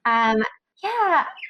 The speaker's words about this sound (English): I also apologize because my bird is very active right now, so you're just hearing a lot of bird stuff, maybe. Oh, yeah, I just heard your bird.